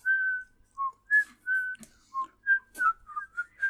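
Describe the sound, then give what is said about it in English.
A person whistles a quick, high melody, about a dozen clear notes with short gaps, some held and some sliding, with faint breathy noises between phrases and no talking. “I can't whistle that high.”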